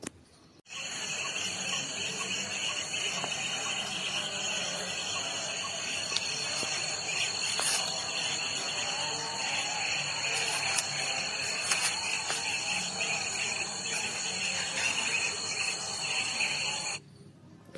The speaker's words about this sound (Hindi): ये जो आवाज़ है ना, वो कुछ ऐसे पंछियों की है, कुछ ऐसे चिड़ियों की है जो कि आए दिन मेरे आसपास जहाँ मैं रहता हूँ, क्योंकि जहाँ मेरा घर है ना उसी के पास में ही जो है बहुत बड़ा सा जंगल एक्चुअली है, बहुत पास में ही जंगल वो पड़ता है।